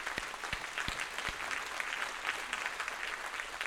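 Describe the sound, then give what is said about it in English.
An audience claps steadily to applaud the Lord in thanks during a Christian sermon, a dense wash of many hands applauding at an even level, with a few low thumps early on and no voices rising above it. “Let's applaud the Lord in thanks.”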